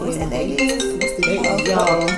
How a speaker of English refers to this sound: Just both of y'all phones was ringing? No, it was going through my phone. I was like, whoa, both of y'all phones ringing at the same time. It was going through my computer.